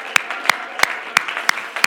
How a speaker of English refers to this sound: Oh, clap your hands unto the Lord tonight.